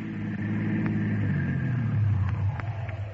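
A car engine rumbles steadily, swelling a little louder before easing down as the vehicle slows and pulls up. No one speaks.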